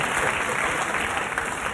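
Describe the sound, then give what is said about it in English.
A studio audience claps steadily in a dense, even wash of applause that holds at full strength for under two seconds, with no voices standing out above it. “And now they applaud me for giving them the finger.”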